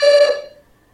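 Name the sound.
doorbell ringing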